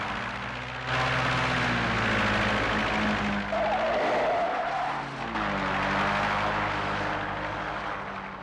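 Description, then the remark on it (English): A Cessna light propeller plane's engine drones loudly and steadily throughout, its rough buzzing hum rising slightly at moments, with no voices. “The first thing we wanted were three, I think they were Cessna 180s, and obviously they had to work.”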